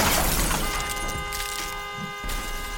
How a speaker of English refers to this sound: Nancy had been doing at least 60 miles an hour when her Oldsmobile careened off the road and smashed into the pole